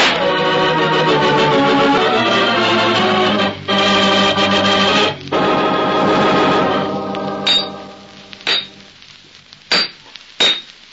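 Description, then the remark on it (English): Loud, ringing metallic clanging of hammering on the hinge of a metal safe fills the first several seconds with dense harmonic resonance, broken by short gaps, then gives way to a few separate sharp strikes on metal near the end as the hinges are knocked off. “A lot of noise hammering on that hinge, eh?”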